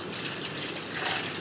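Water pours in a steady, continuous stream, a fairly loud splashing rush with no pauses and no voices over it.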